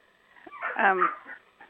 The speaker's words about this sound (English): I'm sorry, the puppy is stuck under something.